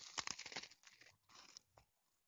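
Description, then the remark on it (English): Crisp crunching as someone bites into a s'more of graham cracker and marshmallow at a campsite, a few quick chewing crunches followed by softer bites that trail off into quiet. “Go ahead and crunch into that.”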